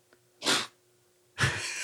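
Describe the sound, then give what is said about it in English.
A dog sneezes twice, two short, sharp bursts about a second apart with quiet between them. The second one trails into a breathy hiss. No one is speaking. “He's a good podcast dog.”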